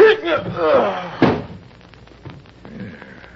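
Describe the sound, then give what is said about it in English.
A man's voice strains briefly, then a single sharp punch from a fist lands on his mouth with a hard smack, followed by quiet shuffling and faint movement. “There was a slight cut on the side of his mouth where my fist had connected.”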